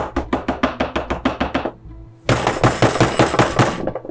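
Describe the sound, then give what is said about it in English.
Rapid, forceful banging on the door of a sheriff's house in town close to midnight, a quick run of about a dozen loud thuds, a brief pause, then a second burst of hurried pounding, with no voices. “And you find the sheriff's house and bang on the door.”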